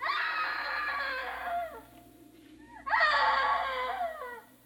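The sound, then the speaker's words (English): A woman screams twice, loud, each long harsh cry trailing off in pitch, with a brief quiet gap between them and no talking. “Hey, screaming woman.”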